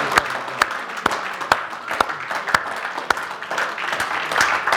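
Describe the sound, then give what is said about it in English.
A crowd applauds steadily in a morning hand clap offering to the Lord, dense clapping with a few sharper, louder claps popping out at irregular moments, sustained for several seconds without speech. “Let's give the Lord a hand clap offering this morning.”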